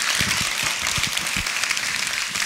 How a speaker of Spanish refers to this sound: Dele un aplauso fuerte a nuestro Dios.